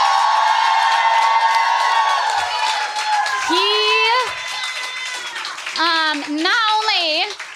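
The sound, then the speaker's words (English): A live audience cheers and claps loudly and steadily for their producer, a producer, with several high, rising whoops and shouts cutting through the dense wash of applause. “Which is I really want to thank, like, I want you all to make a lot of noise for our producer, …, right now.”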